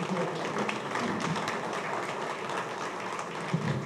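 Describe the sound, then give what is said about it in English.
An audience applauds steadily as three people come forward, a dense crackle of many hands clapping at once that holds a fairly even loudness throughout, with no voices standing out. “Can we give them a round of applause as they come forward?”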